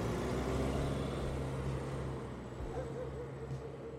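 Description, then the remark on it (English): The engine of a night bus to London rumbles steadily for the whole stretch, a deep continuous drone with a faint hiss layered above it and no clear pauses. “They had a swift toot of Colombia's finest, and they took the night bus to London.”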